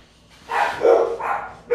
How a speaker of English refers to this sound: What are they barking at? I have no idea. This is what we live with. And, our daughter's, like, asleep on the couch, and they're, like, going crazy. She doesn't wake up. Oh, my dogs. Constant barking.